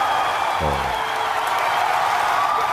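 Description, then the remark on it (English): A large crowd cheers and applauds in a continuous, dense roar during the launch of a Falcon Heavy rocket on its test flight, holding steady and loud throughout, with a brief low hum rising underneath near the start. “T-plus 30 seconds, if you can hear me over the cheering. Falcon Heavy heading to space on our test flight.”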